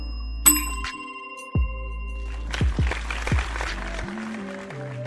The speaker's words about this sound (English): Ring the bell for sexiness.